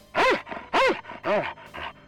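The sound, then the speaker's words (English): Davis, a purebred German Shepherd up for adoption and formerly Coach Smith's dog, barks loudly, three strong, evenly spaced barks followed by a softer, shorter one, with no talking. “Davis is a purebred German Shepherd that some of you may recognize as Coach Smith's old dog.”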